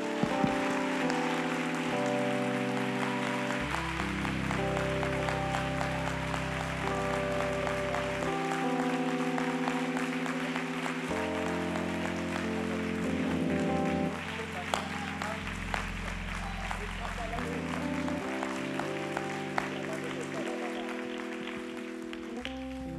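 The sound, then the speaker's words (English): A large audience claps hands steadily for over twenty seconds after a prayer in the name of Jesus, a dense, loud wash of applause over sustained organ or keyboard chords that shift underneath. “Now, if you really believe in the power of the prayer you just prayed, I want you to clap your hands like heaven heard it and hell did too.”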